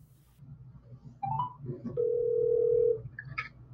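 A phone line rings out as a call is placed during a judge show, a single steady electronic ringback tone lasting about a second, framed by a few brief beeps, over a low background hum.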